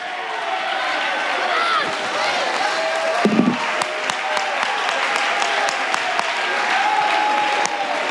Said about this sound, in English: Come on. Come on. Clap to that. Show the devil. Show that spirit of division. Come on. As you're clapping, you ought to say, God, I thank you for my wife.